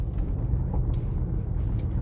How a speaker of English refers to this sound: I am pulling into my truck yard right now so I can start my day.